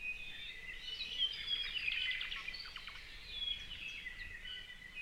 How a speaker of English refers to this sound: They have a huge repertoire of songs, and every individual sings differently. All the Hawaiian Islands used to have their own species of thrush, but unfortunately, Kauai is the only other one where they've not yet gone extinct.